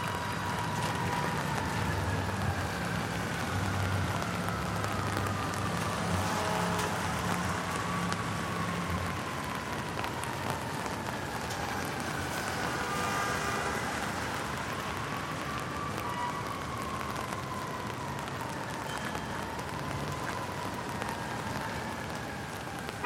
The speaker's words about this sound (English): You might notice the sound of the rain against your umbrella.